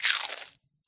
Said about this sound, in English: Little mea culpa, which is that I think 9 times out of 10, the crunching during snack chat is me.